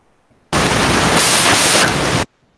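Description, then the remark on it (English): A sudden blast of loud, harsh static hiss cuts in abruptly on a call line as the other caller tries to talk, holds steady for nearly two seconds like a noisy phone line, then stops just as sharply. No voices. “Every time you try and talk Fine, we just get massive static.”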